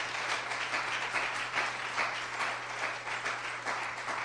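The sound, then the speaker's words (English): A church audience gives the Lord a clap offering, clapping together in a dense, steady wash of applause that holds at an even, fairly loud level for the whole stretch, with no voices standing out above it. “Give the Lord a great big clap offering right now.”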